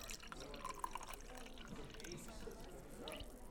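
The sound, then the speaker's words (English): Ice water is poured steadily into a cup, a continuous splashing fill lasting a few seconds with a few small bright tinkles mixed in. “I think it's time we got you some ice water.”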